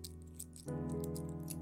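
A few light metallic clinks of three English pound coins bearing the Queen's head, jingling in a hand, bright and scattered. They are heard over a steady low tonal hum that grows slightly louder partway through.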